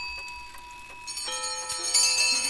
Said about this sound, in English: It was with great astonishment and with a strange, inexplicable dread that as he looked, he saw this bell begin to swing. Soon it rang loudly, and so did every other bell in the house.